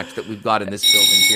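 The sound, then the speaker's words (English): A man talks in a sports bar in Winnipeg, then a loud alarm siren, a war siren, starts blaring partway through: a steady, piercing electronic tone that keeps going under his continuing speech. “I mean, this is a war siren,”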